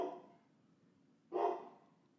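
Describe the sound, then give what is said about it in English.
The speaker's dog, Trig, barks twice, a short fading bark at the start and then another sharper single bark about a second later, both fairly quiet, with no talking. “There's my dog there, Trig.”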